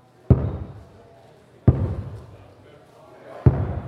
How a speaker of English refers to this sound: The sound was unmistakable. Someone was slamming a basketball into the ceiling above them as hard as they could, as hard as he could.